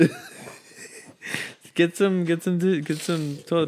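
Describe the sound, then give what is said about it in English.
Soft crinkling of tissue paper being pulled and rustled for a second or two, then a voice starts talking over the fading rustle. “Tissue paper.”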